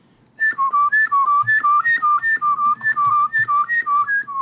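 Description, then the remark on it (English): A single person whistles a horror movie theme melody, a quick, repetitive minor-key tune with the notes pulsing in a steady, insistent rhythm and faint breathy bumps underneath. “I whistle that in elevators just to see if somebody kicks in the bass line, you know?”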